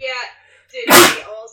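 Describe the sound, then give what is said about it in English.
A single loud sneeze bursts out right after a few quick spoken words, sharp and breathy, fading quickly into quiet. “Bless you.”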